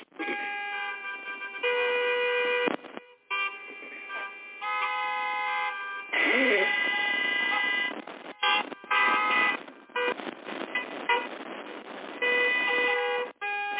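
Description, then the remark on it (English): A dense chorus of car horns honks loudly and almost continuously, long blasts and short toots overlapping in a congested traffic jam, with no talking. “That's exactly what you'll be sitting in. Traffic and weather.”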